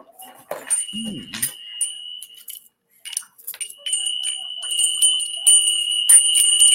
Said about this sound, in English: Let me ring the bells. Ooh, and I do have bells.